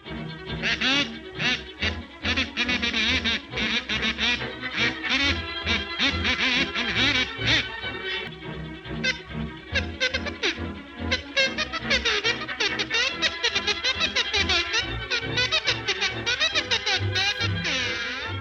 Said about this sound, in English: It did have a synchronized soundtrack. There was the musical score that Chaplin wrote himself and a few sound effects. At the beginning, we hear strange distorted sounds in place of people who are giving a speech.